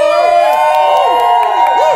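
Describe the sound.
A small crowd of about 24 visitors cheers and whoops together, many excited voices overlapping in a loud, steady din, with a few sharp claps cutting through.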